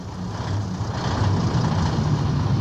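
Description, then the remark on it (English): A heavy truck engine rumbles steadily, a deep continuous drone with a gritty mechanical texture that holds at the same loudness throughout, with no voices present, used as a wrestler's entrance theme song. “A truck's engine running and a horn.”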